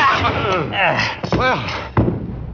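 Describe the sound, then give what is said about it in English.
A heavy wooden thud lands near the end as a man is struck with a chair, following strained voices and scuffling. The impact is sharp and loud, then fades quickly. “You were very handy with that chair. How come you hit him?”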